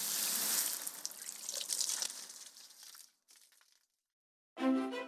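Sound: water running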